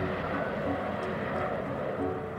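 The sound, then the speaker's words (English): A steady, droning airplane engine hums continuously at an even loudness, a dense low rumble with a buzzy midrange and no breaks. “It's an airplane engine, yeah?”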